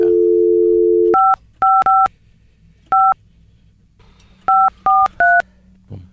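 A steady dial tone hums for about a second, then about seven dual-pitch keypad beeps sound in an uneven rhythm, loud and clear with no voices.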